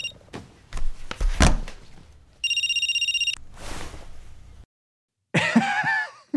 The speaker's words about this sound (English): Okay. Phone. I mean, everybody's talking about it. Phone grab. Here we go.